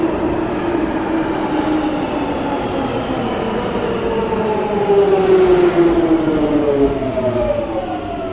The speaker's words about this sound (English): I'm clearly talking very quietly here on the tube.